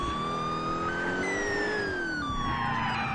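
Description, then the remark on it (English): A siren wails continuously, its pitch sliding up and down in long sweeps over a steady rumble of traffic or engine noise, loud throughout. “Turn that siren off.”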